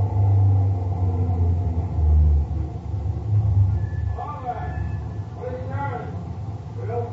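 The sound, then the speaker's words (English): A truck engine rumbles low and steady throughout, easing off slightly toward the end as the truck slows to a stop, with muffled voices rising briefly over the drone partway through. “We're slowing down. Yeah. Think we're coming to the roadblock? Could be. Yeah, he's stopping.”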